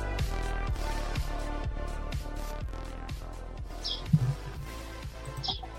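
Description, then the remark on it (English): Two brief, high bird chirps break through steady rhythmic music with a regular beat, faint and a few seconds apart, as if coming from outside through an open window. “I love the sound of birds in the background. Chirping bird, yeah.”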